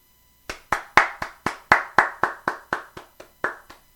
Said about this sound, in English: Those real claps. I ain't going to insert the fake jokes. Well, I might, but I'm just saying. Those real claps, okay? Those real claps from me to you.